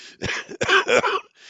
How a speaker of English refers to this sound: I shouldn't laugh. It makes me cough.